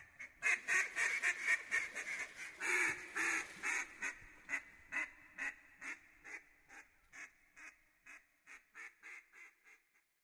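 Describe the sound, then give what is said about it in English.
A mallard duck quacks in a long, rhythmic series of loud, nasal calls, starting dense and rapid and then slowing and fading into evenly spaced quacks, with no other sounds around it. “Long live the king of the ducks, the mallard.”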